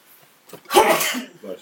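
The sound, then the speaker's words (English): A single loud sneeze: a brief sharp intake of breath, then an explosive burst that trails off, followed by a faint vocal sound. “Bless you.”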